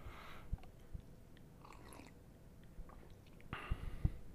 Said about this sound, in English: I dare you, as I take a sip of coffee.